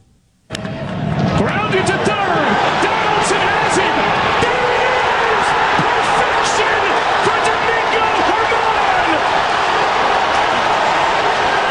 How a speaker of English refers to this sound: You hear the crowd? That's in Oakland. That's a road game. And that is Yankees fans helping Oakland with attendance.